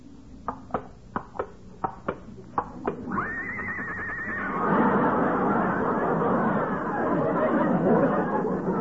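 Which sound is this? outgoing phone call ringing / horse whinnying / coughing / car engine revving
horse whinnying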